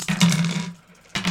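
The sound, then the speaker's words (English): Dice clatter and rattle across a hard surface in a busy burst as players roll their dice in front of them, then fall quiet before a second short rattle follows, with no talking. “Yeah, so let's roll our dice in front of us.”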